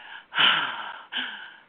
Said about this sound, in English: That whole deep breath thing.